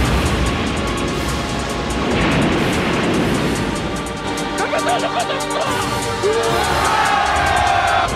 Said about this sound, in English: It feels like it's there to mostly set up the gag of the Russian seamen who are all being rescued, all cheering and shouting in Russian that their captain scared the Americans out of the water.